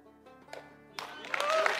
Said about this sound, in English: The crowd gave Andy Savage a standing ovation.